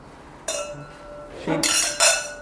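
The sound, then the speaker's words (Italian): Wine glasses clink together in a toast, three bright chimes over about two seconds. The first rings on clearly, the last two come close together, with a faint murmur underneath. “Even with the brindisi there is a history lesson.”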